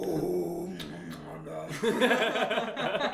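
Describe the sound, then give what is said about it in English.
A person growls low and raspy while producing a second sound at the same time, a rough, gritty vocal texture that grows louder and harsher partway through. “Can you growl and make that sound at the same time?”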